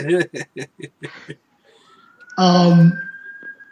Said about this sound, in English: As you hear the siren in the back.